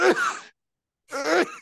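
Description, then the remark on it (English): Two sneezes, each a short, forceful burst of breath and voice, separated by about half a second of silence. “Bless you.”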